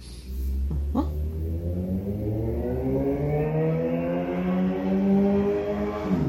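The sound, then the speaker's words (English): A car passes by outside, its engine rumbling steadily with rising and shifting harmonic tones as it accelerates, fairly loud and continuous for several seconds with no talking. “Sorry, there's a car going by.”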